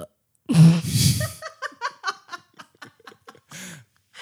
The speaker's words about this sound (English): He hates it when I burp out loud. But that was kind of a cute one.